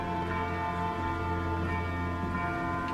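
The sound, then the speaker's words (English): Church bells ring in the distance across a city, their tones overlapping into a steady, shimmering wash of sound with no clear pauses between strikes and no voices. “There's a lot of bells ringing in the distance.”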